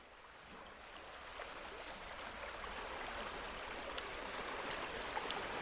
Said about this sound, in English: These geometric lines of nature continue along the beach, where they expose the slow to and fro of the tides that wash seaweed and kelp up on the shore. They follow the calm water edge like concentric circles, the midpoint somewhere out at sea.